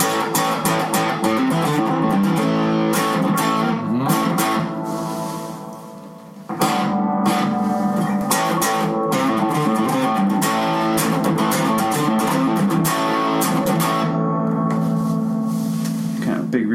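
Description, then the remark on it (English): A loud electric guitar, overdriven by turning up the amp, plays ringing, gritty chords through a spring reverb amplifier. It sustains for several seconds, decays briefly, then comes back with a sharp strum and keeps ringing. “You want to dirty your amp up? Dirty the amp up. Let's see what that sounds like. Let it ring, right?”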